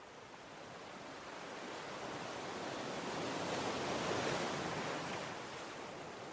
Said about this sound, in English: The sunlight reflects off the ocean, and you let the tide tickle your feet as you walk.